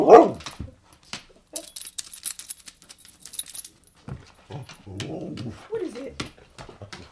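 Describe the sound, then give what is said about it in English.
A dog lets out a loud bark to get attention, wanting a toy thrown to play, followed by a metallic jingling rattle and then a person talking over occasional soft whimpers. “You want me to throw the toy for him? That's his play drive.”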